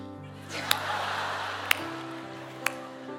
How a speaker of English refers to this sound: And your clapping was not spontaneous. I saw you guys. Your clapping was this kind of this.